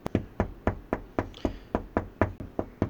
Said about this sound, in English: I think I just heard a knock on my door. I'm going to switch to my phone. Oh, shit. Hold on, guys, one sec. Apparently there's a knock at my door.